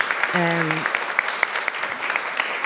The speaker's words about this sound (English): who deserves a round of applause because he makes us sound great.